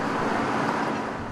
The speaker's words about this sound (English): At the rear entrance, well shielded from the protesters, the politicians arrive in their chauffeured cars.